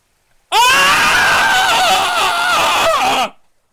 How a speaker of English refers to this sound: So let's have a screaming contest. Let's do it. All right.